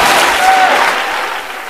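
An audience claps for a revelation in a dense, steady burst of applause that fills the room, holding strong before easing off slightly toward the end.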